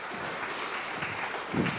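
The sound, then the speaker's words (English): An audience applauds all the men who came in and helped out on Friday, clapping together in a steady, dense patter of many hands, holding at a moderate level for about two seconds with a slight swell near the end. No one speaks. “Can we give a round of applause to all the men that came in and helped out with this on Friday?”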